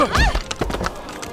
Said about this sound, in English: The horses that were about to trample you today?